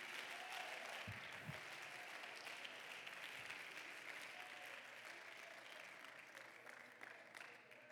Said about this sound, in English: Oh, somebody clap your hands to the Lord, and you ought to praise him, and you ought to grab a hold of the scent of water today.